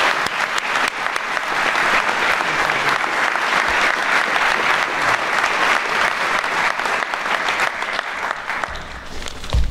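Sustained applause from a large audience, a dense wash of many hands clapping steadily and fairly loudly for about ten seconds, with no one speaking over it.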